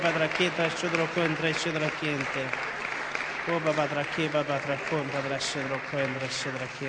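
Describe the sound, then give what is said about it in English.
An audience gives God a round of applause after the closing blessing, steady, sustained clapping lasting several seconds, a dense wash with voices calling out and talking over it throughout. “Can we give God just a big round of applause?”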